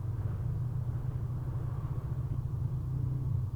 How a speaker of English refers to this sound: Listen to the sound of the wind.